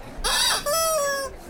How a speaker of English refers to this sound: I'll be the rubber chicken. I like that. That's even better. Rubber chicken.